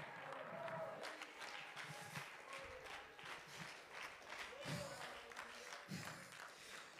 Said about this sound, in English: Come on, if you believe that, clap your hands and give God a shout of praise.